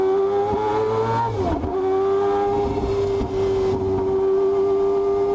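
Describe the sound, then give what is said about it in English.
A Mazda 787 four-rotor rotary prototype sports race car engine roars loudly with a shrill, buzzing tone. The pitch dips briefly as it shifts, then holds a steady high rev. No one speaks. “And you know, as far as race cars are concerned, one of my all-time favorite race cars is the Mazda 787 prototype sports car.”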